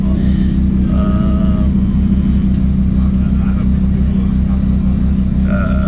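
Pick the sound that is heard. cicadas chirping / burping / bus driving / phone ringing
bus driving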